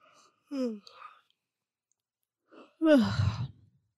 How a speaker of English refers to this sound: You started it. I did not. You yawned first.